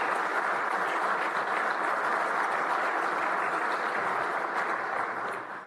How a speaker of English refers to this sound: So give them a round of applause, please.